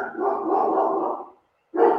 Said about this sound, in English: And then whose dog is that? Mine. Oh my God, I'm muting myself. He's so loud.